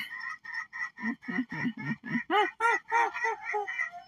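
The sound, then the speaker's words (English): Chickens cluck in a quick, steady run of about a dozen calls that build in loudness and pitch, like a cackling laugh, with no talking. “My chickens laugh just like me.”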